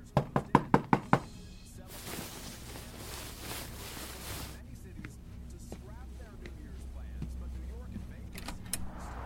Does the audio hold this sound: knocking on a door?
yes